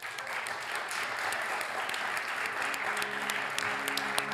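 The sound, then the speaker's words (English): A crowd at a service applauds steadily to thank a volunteer who hangs the lights, many hands clapping in a dense, even patter that holds at a moderate level throughout, with a faint tonal hum emerging underneath toward the end. “Let's give Jordan a round of applause.”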